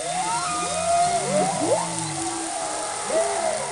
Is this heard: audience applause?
no